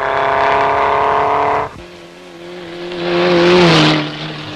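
A racing car engine howls at a steady high pitch, cuts off abruptly, then a second engine note climbs and swells into a loud roar before easing back down, at the Shelsley Walsh hill climb, with Tony Marsh driving his 1.5-litre Cooper.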